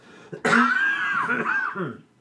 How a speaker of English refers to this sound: I still have this cough.